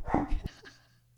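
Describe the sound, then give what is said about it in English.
A dog gives two quick, loud barks, then the sound fades into quiet with only a faint low hum remaining. “Let me kill this dog.”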